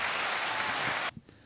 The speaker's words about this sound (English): We've splurged here at Cocktails and Company. We now have an in-studio bartender. Ooh, round of applause.